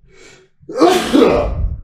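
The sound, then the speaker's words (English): A brief murmured phrase gives way to one loud sneeze, an explosive burst that breaks out sharply and then trails off over about a second. “Constantly, people have issues about it, and I'm gonna sneeze.”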